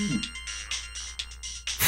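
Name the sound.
phone ringtone ringing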